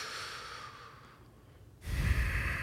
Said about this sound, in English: Just gotta breathe, man. You gotta breathe. You gotta take a moment. Take 20 big breaths, dude. 20 big inhales.